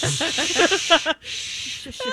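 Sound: angry cat hissing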